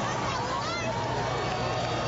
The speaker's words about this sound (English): Spartans fans cheering on their defense.